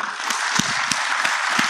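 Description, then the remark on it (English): An audience claps together in answer to a speaker's question about how many people still run .NET 2.0, a dense wash of many hands with louder clap accents surfacing roughly every third of a second, steady and fairly loud throughout, with no talking. “How many people still run in .NET 2.0? Clap.”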